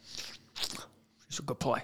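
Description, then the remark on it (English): A voice imitates chomping on a wad of chewing tobacco: two wet, hissy mouth bursts followed by a couple of gravelly, smacking chewing noises, fairly loud. “He's going to be sitting next to you in the theater. You want to go skydiving? Chomping on his Rocky chew.”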